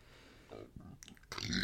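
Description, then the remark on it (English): A short, low, guttural burp rumbles for about half a second before a louder, breathy burst of noise cuts in. “Oh, sorry, Henry's mom, for burping right then.”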